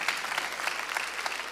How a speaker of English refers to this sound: Now, if you really believe that, clap your hands and give God praise. Come on.